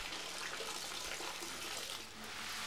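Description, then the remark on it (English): Hot water for washing runs steadily from a tap in a hospital, in a continuous, hissing gush, fairly loud, with only a brief dip midway and no voices. “There's an entirely separate system for the hot water needed for domestic washing use within the hospital.”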